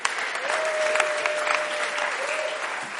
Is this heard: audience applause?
yes